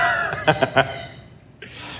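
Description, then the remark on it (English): Marvin and Mavis, two black-bellied whistling ducks at an exhibit, give a quick run of three squeaky, whistled notes, followed by a fainter airy call, with a steady background hum throughout. “They are two black-bellied whistling ducks. So named because they actually do let out a little bit of a whistle.”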